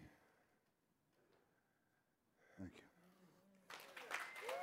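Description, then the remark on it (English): After a quiet stretch and a brief spoken voice, audience applause breaks out abruptly and builds into a loud, dense wash of clapping that carries on to the end. “Keep that round of applause going, can we?”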